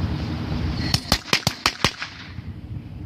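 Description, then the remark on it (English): A propane cannon at an electrical substation in North Adams, Massachusetts, fired to drive off crows: a quick burst of about seven sharp, cracking bangs in rapid, even succession, like a string of firecrackers, over a steady low outdoor rumble, then falls quiet. “Let's hear the propane cannon being fired off in North Adams, Massachusetts, to get rid of the crows hanging around the electrical substation.”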